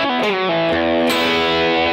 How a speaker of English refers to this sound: So then, what I do is on top of that, I add just some sort of a stomp box, just a little bit of distortion, just to kind of push me over the edge a little bit.